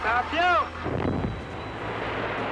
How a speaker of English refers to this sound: Montreal was a huge construction site. We were building the subway, Expo, and all the big buildings that you see in downtown Montreal. In this old footage, you can see some of the dynamite being put to work on the Expo 67 site.